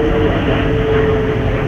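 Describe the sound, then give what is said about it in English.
A steady, rumbling roar of an airplane flying over a house, loud and unbroken throughout, with a faint humming tone running through the low drone and no one speaking. “You hear airplane flying over my house.”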